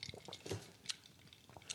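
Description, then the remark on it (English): A few light clinks of ice against a cup as someone drinks, with soft wet slurping and liquid sounds between them; quiet, no talking. “Listen to that ice dribble. Yeah, it's the ASMR. That ice hit the cup.”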